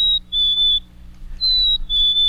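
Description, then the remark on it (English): A black-capped chickadee's spring song: clear, pure, high whistled notes that sag slightly in pitch, sung as two-note phrases repeated twice with a short gap, over a faint low hum. “That one's already confused, singing a spring song.”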